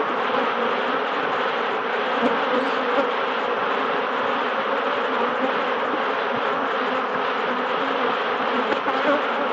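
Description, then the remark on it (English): A dense, steady, loud drone of many honeybees buzzing together inside a hive, continuing without pause for the whole stretch with no voices. “So when a bee comes in from harvesting or from angry battle, it flies into the hive, and here's some picture of it, and it waggles its beard.”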